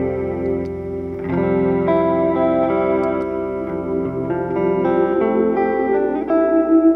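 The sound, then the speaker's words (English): Electric guitar played through a Strymon BigSky pedal, used for ambient effects rather than reverb. Sustained chords wash into shimmering, chorus-like layers with echoing tails, fairly loud and steady, with no talking. “And then that's followed by Strymon Big Sky, which is, I'm not using for reverb. I have a reverb later in the chain. I'm more using it for cool, like, effects.”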